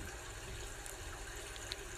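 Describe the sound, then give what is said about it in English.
A soft, steady wash of calm ocean waves lapping against a raft, continuous and low, with a faint small splash near the end and no voices. “The ocean is calm today, gentle today, almost beckoning you to take something out on it and sail across it.”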